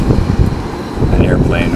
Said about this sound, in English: An airplane over Beirut.